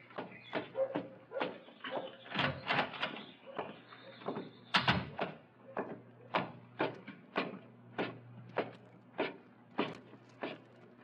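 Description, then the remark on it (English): A door creaks and clatters open with a drawn-out squeak, followed by a steady series of sharp, evenly spaced thuds, like footsteps climbing wooden stairs. “Just open the door and come on up.”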